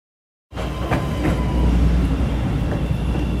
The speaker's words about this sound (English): second day of school, and I'm on a red line train heading downtown.